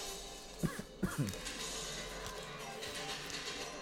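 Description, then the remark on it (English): A crow caws three times in quick succession in film audio, short harsh calls over a steady hiss of background noise with no other distinct sounds. “That bird's going to help find Eddie.”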